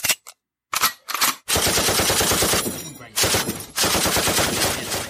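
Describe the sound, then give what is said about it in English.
Loud sound effects of rapid automatic gunfire and blasts: a few short bursts, then a sustained, dense barrage that dips briefly before pounding on. No one speaks. “Bombs. Explosions.”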